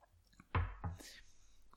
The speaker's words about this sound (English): Why don't we start reading after I have another sip of bourbon? Mmm.